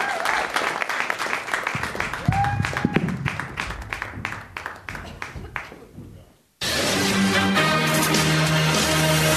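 A crowd gives a round of applause for producers of the show Just Words, many hands clapping in a dense patter that gradually thins and fades, then a brief silence before a loud, steady, dense sound abruptly starts.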